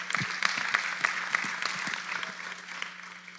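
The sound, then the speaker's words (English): A crowd claps steadily in a dense, sustained burst of applause, with scattered sharper individual claps standing out over the general patter, moderately loud and reverberant. “And so, guys, give yourselves a round of applause as well.”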